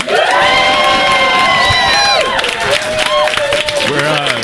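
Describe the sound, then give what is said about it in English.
A live audience in Austin, Texas cheers loudly and steadily, with high shouts and whoops layered over a dense wash of voices and some clapping, holding full volume for several seconds. “We have a lot of excitement in the crowd, and you'll hear them at the very end asking some amazing questions for hiring decision makers.”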